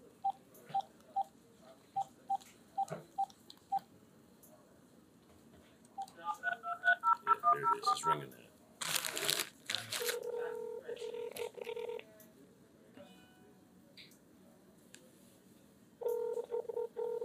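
A phone number being dialed again: a run of evenly spaced keypad beeps, then a quicker burst of dialing tones, followed by a brief rustle and steady, sustained phone-line tones that stop and later resume.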